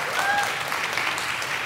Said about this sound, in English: Let's give Nina a round of applause for being here.